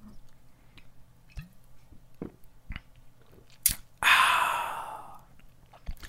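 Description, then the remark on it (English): A few soft mouth clicks and swallowing sounds of someone sipping Strongbow cider, followed by a loud, breathy exhale of satisfaction lasting over a second, with no talking. “Speaking of being prodded, I feel like I should take a sip of Strongbow.”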